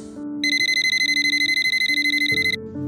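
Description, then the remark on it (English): A telephone in a house rings with a shrill, rapidly trilling bell for about two seconds, one continuous burst, over a low, sustained musical drone, before it is answered. “Drake takes a deep breath and answers the phone.”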